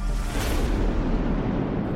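A thunder sound effect opening the Daily Thunder broadcast: a deep, loud thunder boom with a sharp crackle at the start, rolling into a sustained low rumble that fills the whole two seconds without fading out.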